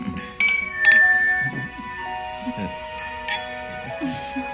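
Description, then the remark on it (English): Glasses clink together in a toast, three or four bright strikes whose high tones ring on and fade slowly, with people talking quietly underneath. “How about a toast then? To Thomas and Julia.”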